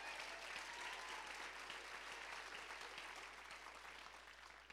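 An audience claps their hands in steady, sustained applause, a dense wash of many overlapping claps that stays loud throughout and tapers only slightly near the end.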